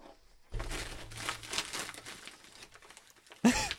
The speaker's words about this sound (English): Yeah, we have open mail. Open it with your scissors. From Michelle, and we're going to open it right now. I have scissors.